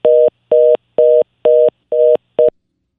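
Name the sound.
telephone dial tone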